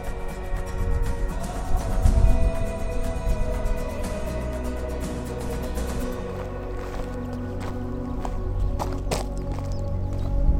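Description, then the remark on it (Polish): A mountain stream in Zakopane, Poland, in midsummer babbles steadily nearby, its continuous rushing wash dotted with small splashes and clicks, while trees rustle softly in the background; no one speaks. “Mamy w Zakopanem pełnię lata, siedzimy sobie nad strumyczkiem, szumią nam drzewa.”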